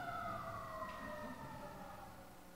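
A siren wails steadily outside, its tones holding and slowly sliding as an emergency vehicle passes, with a low rumble of traffic beneath and no talking.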